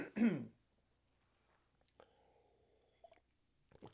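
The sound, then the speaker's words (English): A man clears his throat once, a short, gruff burst at the start, followed by near silence with only faint, scattered small noises. “And while I'm waiting for you to answer, I'm going to see if I can clear my throat.”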